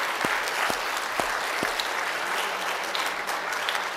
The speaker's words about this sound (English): Please congratulate your family again, and for the members here, would you just give them a hand clap for the faith it took for them to be involved?